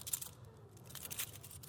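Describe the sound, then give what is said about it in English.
A coin changer worn on a belt, holding coins, clicks repeatedly, a quick series of small, sharp metallic clicks, quiet and unaccompanied by voices. “Oh, it's one of those coin changers that you put on your belt.”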